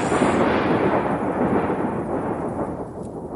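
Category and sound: nature, thunder rumble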